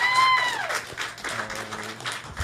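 An audience applauds with a steady, dense patter of clapping throughout, mixed with a brief descending whistle-like tone at the start and sustained low musical tones later on.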